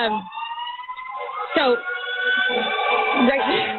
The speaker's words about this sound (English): Sorry, we've got an ambulance going by right now, guys.